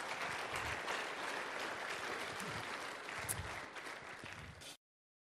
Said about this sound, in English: Could you guys give an awesome round of applause to our worship team and our production team